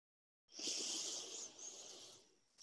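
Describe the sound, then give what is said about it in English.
A long, deep inhalation drawn through the nose during a guided meditation, clearly audible, starting abruptly after silence and sustaining with a breathy hiss for about two seconds, no talking. “Breathing in.”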